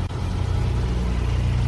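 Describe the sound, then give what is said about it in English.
A Tesla car roars steadily at speed, a loud, continuous low drone with no letup or sign of braking, heard alone without any talking. “That shit was not slowing down, bro.”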